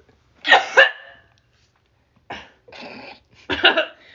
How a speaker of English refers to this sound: Oh god, I have to cough so hard. You can cough.